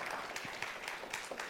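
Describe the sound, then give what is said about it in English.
An audience claps for a musician who performed alone on stage, a steady, dense round of applause, a continuous patter of many hands with no voices standing out above it. “How about another round of applause for Sean?”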